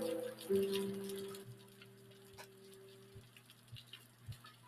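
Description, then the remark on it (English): Soft, steady rain patters with a hissing texture over a low humming drone, gradually thinning and growing quieter until only scattered drips and faint ticks remain. “The rain fades out as the sun comes up on a beautiful Xanthion day.”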